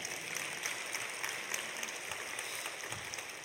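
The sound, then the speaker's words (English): A crowd claps steadily, a dense sustained patter of many hands at an even level with no voices on top, continuing through the whole stretch. “We didn't even have an applause sign up anywhere.”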